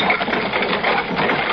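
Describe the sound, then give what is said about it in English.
A vehicle rattles and jolts along a rough road, a dense, steady clatter of shaking metal and a rumbling motor that stays fairly loud throughout, with no voices. “It just seems like we might as well be riding down a wash or a gullies on this road.”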